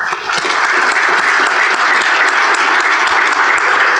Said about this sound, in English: Well, excellent. Let's have a round of applause for our panel here.